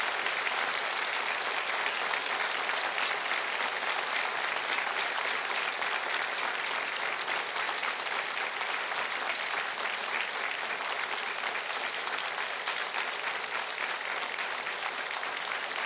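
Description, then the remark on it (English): Sustained audience applause in tribute to the people in Israel fighting for their lives fills the whole stretch, a dense, steady wash of many hands clapping at an even loudness with no voices standing out. “So tonight, I ask the audience, join me in a special moment of tribute and applause to those brave souls in Israel who are fighting for their lives and fighting for freedom for all of us.”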